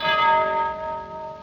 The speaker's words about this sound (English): With sudden shock, the prison clock smote on the shivering air.